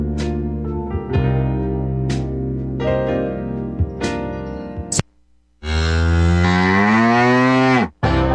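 A cow moos loudly in a long, drawn-out low call, then after a brief pause lets out a second sustained moo that rises and falls in pitch.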